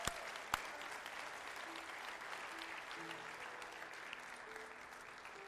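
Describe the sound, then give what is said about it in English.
A church audience applauds for those who made a decision that morning, a steady wash of clapping, dense and sustained throughout, with a couple of sharper claps near the start and faint voices murmuring underneath. “Church, can we give a round of applause to all those who made that decision this morning?”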